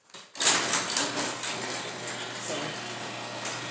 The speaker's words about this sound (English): I'll wait for the garage door. It's not that loud.